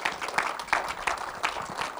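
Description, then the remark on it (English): An audience gives the Lord a clap of praise, clapping together in a steady, fairly quick rhythm, with sharp bright hand claps rising above a broad crackle of scattered applause, moderately loud and with no voices on top. “Let's give the Lord a clap of praise right now.”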